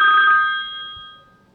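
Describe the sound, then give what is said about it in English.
A phone rings with an incoming call from Alan Knight: one bright, high electronic ring tone that starts at full strength and steadily fades away over about a second, with no voices. “Got Alan Knight beeping in, man. That wasn't supposed to connect like that. Celebrity call.”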